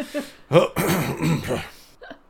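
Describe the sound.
A voice imitates a loud hiccup: a sudden, throaty vocal burst followed by a rough, breathy gulping stretch and a faint little catch at the end.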